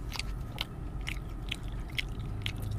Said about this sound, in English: This is actually our mukbang episode. You know, if you want to sit down, grab a snack, grab a drink, pull up a chair, eat with us. We're enjoy the chewing sounds. It's like ASMR.